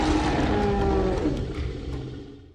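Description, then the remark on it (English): A mother pachycephalosaurus lets out one long, loud, happy roar on reuniting with her baby, deep and rumbling with a bright tonal edge, holding steady before trailing off and fading at the end. No talking. “The mom let out a happy roar.”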